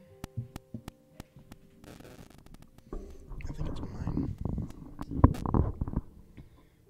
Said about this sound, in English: She has... hold on 1 second, you guys. We've got some static issues. Just 1 second.